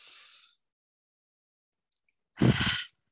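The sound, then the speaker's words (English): A short airy deep breath in, a pause of near silence, then a fuller, louder breath out like a soft sigh, taken to blow out tension and stress. No talking. “And so let's just have a deep breath.”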